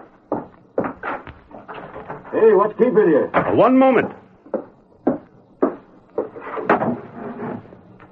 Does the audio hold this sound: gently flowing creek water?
no